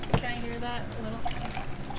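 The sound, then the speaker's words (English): Water pours steadily into a cup, a continuous trickling splash lasting a couple of seconds, with faint voices murmuring in the background. “Can I hear that a little? There you go. Damn, that I got it clean. Just dunk the mic.”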